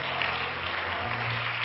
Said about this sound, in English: If you're glad to be in the house of the Lord tonight, why don't you clap your hands, lift your voice unto God.